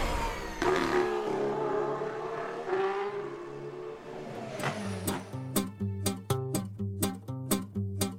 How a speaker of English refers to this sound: Immediately following turn 12, which, despite having no official name, has over the years been labeled by riders and commentators as no name, drivers are hard on the brakes for the fast and funneling second or third gear left-hander of Rodolfo.